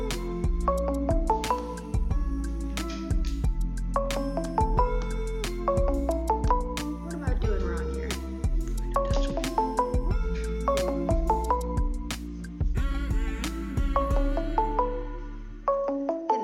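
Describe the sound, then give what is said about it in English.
A phone rings for an incoming call with a melodic ringtone, a bright tune of chiming notes repeating over and over for about sixteen seconds, loud, with no voices over it. “Why isn't our phone just letting us answer this call?”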